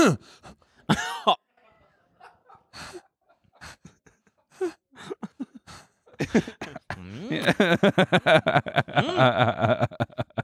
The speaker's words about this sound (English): Or you just cough.